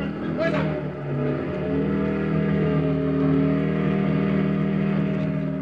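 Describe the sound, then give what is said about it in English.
A parked motorcycle is started and driven off: its engine rumbles loudly, holding a steady throaty drone that swells slightly as it revs and pulls away, with a brief higher whine near the start. “Then I borrowed a parked motorcycle. Just as the Germans were spilling out the front door, I drove off, headed back to where I'd buried the papers.”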